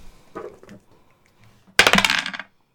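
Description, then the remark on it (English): A few soft clicks, then a loud burst of black dice clattering and rattling across a hard tabletop for about a second before settling, bright, rolling a seven. “Black dice. There you go.”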